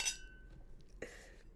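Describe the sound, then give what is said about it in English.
Two bright glass clinks about a second apart, each with a short ringing tone that fades quickly, like glasses touched together in a toast. Quiet, with no talking. “Oh, let's clink.”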